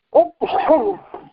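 A close, fairly loud sneeze: a short sharp catch, then a longer voiced burst that trails off into a brief final gasp, with no talking around it.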